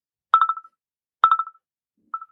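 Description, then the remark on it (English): Telephone dialing tones as a phone is tried out: three quick bursts of electronic beeps about a second apart, each a rapid cluster that trails off, clear with no talking. “oh shit, we're going to try the phone out.”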